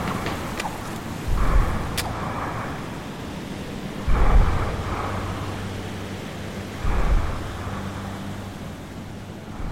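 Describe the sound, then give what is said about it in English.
Steady rain hisses throughout while three deep rolls of thunder rumble at regular intervals, each swelling and fading, with no voices present. “The timbers of the ship creaked and strained, but she was built strong to withstand the stresses of a writhing eel, and she held fast as the huge creature dragged her through the storm.”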